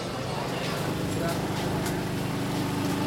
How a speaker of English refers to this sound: The gentle humming you're hearing are generators. But that's how people charge their phones and cook now. They have to get one of the generators.